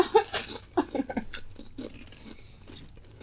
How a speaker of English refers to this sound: Enjoy as many as you want. We're having a chew break now.